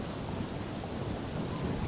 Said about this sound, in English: If we can just have a bit of thunder, a bit of lightning and everything else.